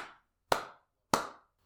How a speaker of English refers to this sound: Slow clap there. Thank you for the slow clap. Brilliant.